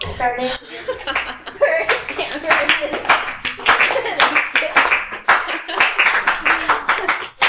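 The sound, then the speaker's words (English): A crowd doing a slow clap in unison, starting at a steady beat and continuing as a loud, sharp rhythm of claps, with a brief voice at the start and some murmuring underneath. “can we get a slow clap?”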